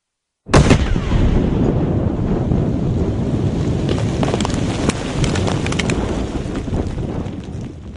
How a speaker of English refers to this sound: I hear like explosions, I hear sirens, like I think it started, I think it started.